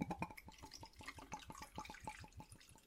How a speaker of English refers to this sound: You just want to hear the bubble? Yeah, it's just a pour. That's a medium pour, not a heavy pour, right?